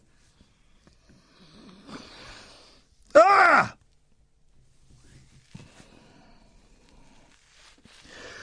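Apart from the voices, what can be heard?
big yawn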